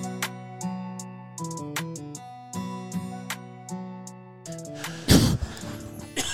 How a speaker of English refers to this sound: It's all right. You can cough on the podcast.